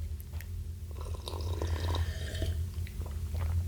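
Wet slurping sips of chaga tea from a mug, a brief cluster of liquid sounds in the middle over a steady low background hum, with no talking.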